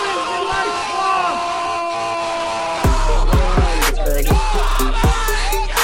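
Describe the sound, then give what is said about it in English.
An MLG screaming children sound effect: a loud crowd of children screaming and whooping in shrill, wavering voices; about halfway through, heavy booming bass hits start thumping repeatedly under the continuing yells. “Oh no, I didn't realize I had left the MLG screaming children sound off.”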